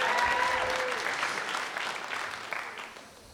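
An audience at a Bible teaching claps steadily for a member of the group, a dense wash of many hands that stays fairly loud before thinning and fading toward the end, with a brief tonal whistle-like sound early on.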